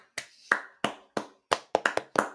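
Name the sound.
round of applause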